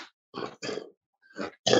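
Four rough, gurgling coughs come in quick bursts with short pauses between them, wet and strained as though clearing phlegm, with the last one the loudest. No one speaks.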